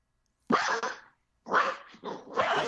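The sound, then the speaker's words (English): A dog barks and growls in three rough, drawn-out bursts, fairly loud, with a short silence after the first outburst and no one talking. “I take it Simba is not happy with that decision. Sorry about everyone that's listening. That's Ted's dog.”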